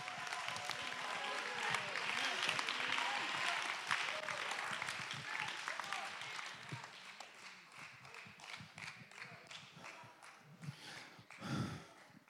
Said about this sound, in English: Somebody clap your hand. Somebody give God the praise.